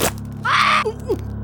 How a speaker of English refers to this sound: A small yelp as it latched onto my second toe and began chewing again.